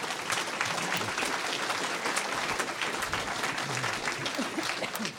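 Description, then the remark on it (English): Steady applause from an audience welcoming party candidates at an evening candidates' event, a dense wash of many hands clapping at a fairly even level for several seconds, with no one speaking over it. “Yes, give them a clap.”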